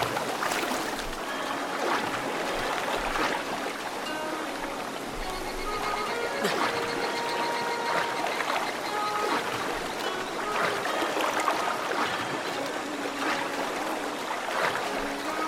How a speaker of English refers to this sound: We are at Lantern Lake. We've accidentally got caught up in the waterfall.